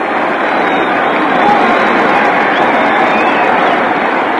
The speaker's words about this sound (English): Now the crowd's really active. Listen to them.